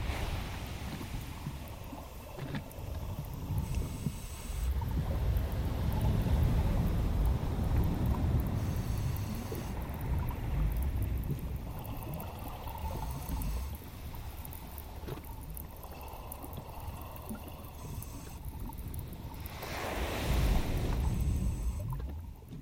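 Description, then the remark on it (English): Ocean waves in warm tropical waters roll and wash in a steady, deep rumble, with louder surges swelling and hissing a few times, including a strong one near the end. No one speaks. “So I am going to do my best to try to relax those parts of my body, and I encourage all of you to relax right alongside me as we go into this immersive experience with me, …, into the warm tropical waters of our world's oceans.”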